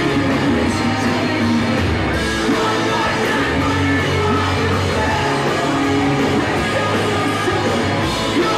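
Loud, dense rock music plays throughout, with harsh screamed vocals layered over a sung melody and a steady wall of distorted instruments.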